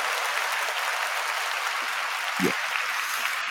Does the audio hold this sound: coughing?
no